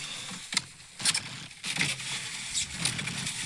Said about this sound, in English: That's me getting in the car.